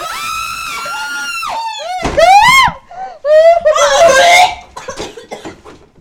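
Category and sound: human body sound, people screaming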